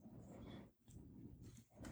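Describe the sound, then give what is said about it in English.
A deep, rumbling growl rolls on in sustained bursts with a brief pause in between, fairly loud, menacing and low-pitched throughout. “Oh, he's growling.”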